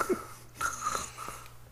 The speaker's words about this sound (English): That's just me breathing, my friends.